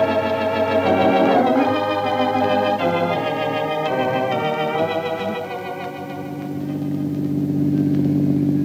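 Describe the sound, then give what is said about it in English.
A car engine runs continuously with a loud, droning hum that falters and dips briefly near the end before swelling back up, with no voices present. “Listen to that engine, Penny. Seems to be something the matter with it.”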